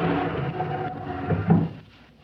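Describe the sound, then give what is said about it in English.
A door swings open with a long, drawn-out creak, ending in a soft knock before the sound fades away. “I'm going to open the door.”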